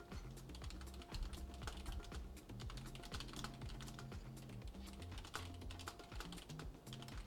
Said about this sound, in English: My typing's a little better today.